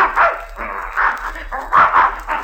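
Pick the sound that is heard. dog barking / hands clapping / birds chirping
dog barking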